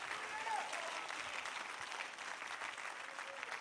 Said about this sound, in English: And if you believe that, would you say amen and clap your hands to God one more time and give him a little bit of praise?